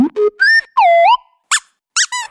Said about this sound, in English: you're covered in really squeaky dog toys.